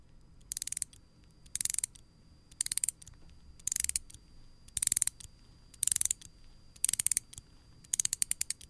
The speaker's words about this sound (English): Yeah, it's winding up a toy. You may have said a watch, but it's a toy. One of those toys that move by themselves. You will wind them up.